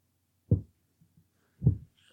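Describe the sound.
Two soft, low thumps about a second apart, like a slow, faint heartbeat, with only a couple of tiny pulses between them and no voices.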